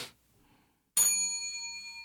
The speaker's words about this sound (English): And before we move into the next section, will you please twiddle your bells.